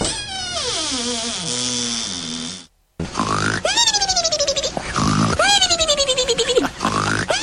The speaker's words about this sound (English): That's a piglet. I hope you didn't wake them up. Sleeping room piglet.